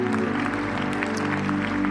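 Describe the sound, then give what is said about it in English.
A church audience applauds its missionaries, many hands clapping in a steady, dense patter at even loudness. A sustained low tone hums beneath the clapping throughout. “So why don't we give all of our missionaries and all the people that they represent a great round of applause.”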